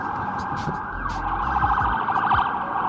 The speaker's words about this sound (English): Looks like an ambulance. I'm sure they are going somewhere to help some people.